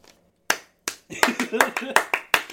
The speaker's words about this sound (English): Thank you. Is it clapping for me or Happy Feet? Clappy Feet. were you clapping with your feet just then?